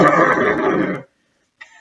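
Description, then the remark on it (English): A person imitates a horse whinny with a loud, quivering vocal neigh lasting about a second, followed by silence and a brief faint breathy sound at the end. “That was a really bad horse.”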